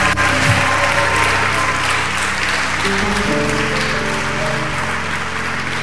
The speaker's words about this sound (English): You may go back to your seats. God bless you. Clap for them as they go back.